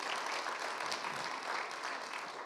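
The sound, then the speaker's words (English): Sustained applause from a crowd for the worship team at PCN in the morning, a dense, steady wash of many hands clapping at once with no individual claps standing out, continuing at an even level throughout. “If you appreciate our worship team, would you just give them a round of applause this morning?”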